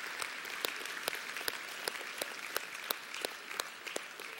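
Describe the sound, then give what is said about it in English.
A church audience claps steadily in the morning for the strong women of God in their lives, a dense patter of many hands with a few sharper, louder claps standing out, holding at an even level throughout with no voices. “Can we just give it up for the strong women of God in our lives?”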